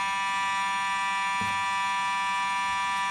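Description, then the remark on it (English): A fire alarm blares continuously, a loud, steady electronic tone with dense harmonic layers that doesn't let up, with a brief low thump partway through. “Unfortunately, we're experiencing an alarm here. The fire alarm went off.”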